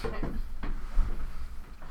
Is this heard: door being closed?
yes